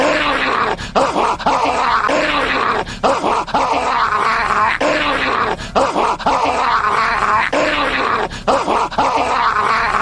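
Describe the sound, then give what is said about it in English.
A man's voice imitates a snarling, rabid dog, with harsh growls and ragged snarls repeating in short bursts. The sound is loud and continuous for the whole stretch, with brief gaps for breath. “That man speaks fluent rabid dog.”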